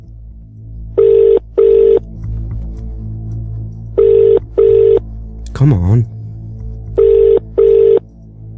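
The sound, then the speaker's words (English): A telephone ringback tone on an outgoing call repeats in three double-pulse pairs with pauses between, clear and steady over a low hum, while a voice briefly mutters between rings. “It's ringing.”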